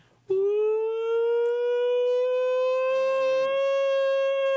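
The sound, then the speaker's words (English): A dog lets out one long, loud, steady howl, as if singing along, holding a high, singing note for several seconds with only a slight rise in pitch, with no talking. “Sounds like a dog.”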